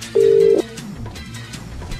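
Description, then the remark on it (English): A single loud, steady burst of an outgoing-call ringing tone, lasting about half a second, as a live show calls a competition entrant back, followed by a faint hum of line noise with no talking. “Answer the phone.”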